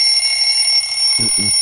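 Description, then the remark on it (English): A shrill, buzzy phone alarm tone rings steadily like an old-fashioned telephone bell, loud, with a couple of brief low voice bursts near the end. “That's the one you should be using for your alarm, by the way. That's the that'll wake you up. Sounds like an old school phone.”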